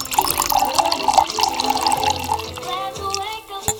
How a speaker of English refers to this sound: So, sip, sip, gang. Wherever you are, let's pour that drink.